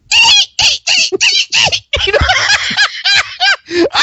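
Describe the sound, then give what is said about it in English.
A voice imitates dolphin sounds to say the title of the film Dolphin Tale 2, a rapid run of high, squeaky chirps and whistles with quick rising and falling pitch, broken into short bursts with a slightly laughing edge. “Wait, say it in the official language of the animal that the movie's about.”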